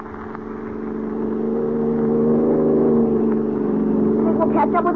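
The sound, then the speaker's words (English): A fast car's engine drones steadily at speed, a loud hum that swells over the first couple of seconds and then holds, with faint voice-like bursts near the end. “They've got a fast car, but we're stepping right along.”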